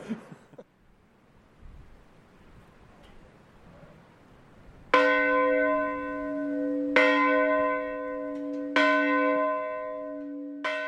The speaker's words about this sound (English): Every year, at the moment that the Titanic sank, 2:30 a.m, the village rings its church bell. Slow rings for the people that drowned and fast, joyous rings for the three women that were saved.